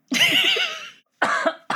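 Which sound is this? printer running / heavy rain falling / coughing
coughing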